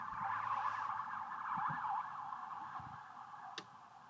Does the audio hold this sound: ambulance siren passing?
yes